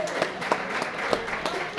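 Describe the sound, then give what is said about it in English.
An audience at Bricks and Ivy applauds the venue's owner steadily, a dense patter of many hands clapping at once with a few sharper claps standing out, sustained at moderate loudness throughout. “Yeah, how about a round of applause for this guy right here?”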